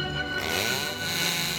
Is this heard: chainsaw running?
yes